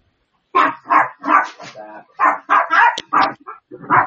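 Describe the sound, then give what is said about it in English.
A male dog barks repeatedly, a quick, uneven run of about nine or ten loud barks separated by brief gaps. “Well, the dog's chiming in, saying apparently he doesn't.”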